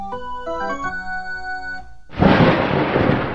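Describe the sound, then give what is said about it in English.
A few seconds of sustained musical tones cut off abruptly by a sudden, loud crash of thunder from a lightning storm that roars on with a broad, rumbling wash of noise. “That lightning will spoil the final stage of my experiment.”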